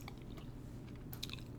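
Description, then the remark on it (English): Close-up chewing right against the microphone, with wet, crackly mouth sounds and a few sharper crunchy bites, especially near the end, over a low steady background rumble and no talking. “Okay, I'm just checking, because I want to do a whole ASMR with me chewing into the mic.”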